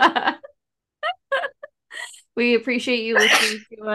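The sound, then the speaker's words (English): A loud sneeze bursts out after a few words of talk, with a sharp hissy onset and a voiced, strained release before speech resumes. “Bless you.”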